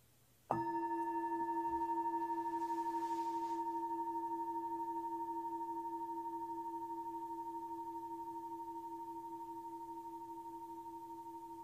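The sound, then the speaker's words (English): A meditation bell is struck once at the start of an evening meditation session, then its bright, steady tone rings on and fades very slowly over about ten seconds. A low hum and a higher shimmer blend in the ring, with no voices. “So just settling into your posture, and I think I will begin with a bell tonight just to set things off.”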